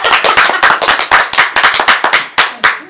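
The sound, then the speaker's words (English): A group of people clapping their hands together to thank the cook after a dinner, a quick, dense run of sharp, bright claps overlapping in an uneven rhythm that fades slightly toward the end with a few final claps. “Everybody clap.”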